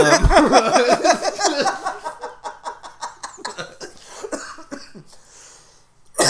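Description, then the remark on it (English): A smoker's burst of wheezy laughter breaks into a harsh, rattling coughing fit, a rapid run of loud coughs that trails off into ragged breaths and a few weaker hacks. “Can't even get through a laugh without coughing.”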